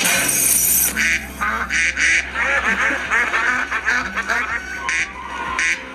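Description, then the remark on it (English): A rapid flurry of duck quacks, loud, overlapping in dense bursts across the whole stretch with a steady low hum underneath. “For instance, instead of bang, bang, bang, bang, maybe they could make them sound like ducks.”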